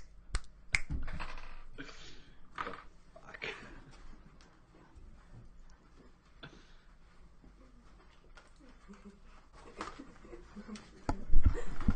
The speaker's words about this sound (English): And so let's try this technology again and see if it works. I'm going to go ahead and do like three snaps.